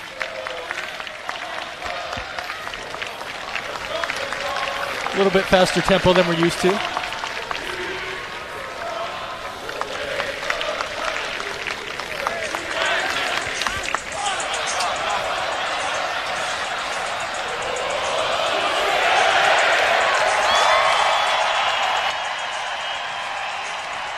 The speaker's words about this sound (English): And let's head right down to field level where we can pick up some of the sound of the BYU fans having... There we go, fight song time.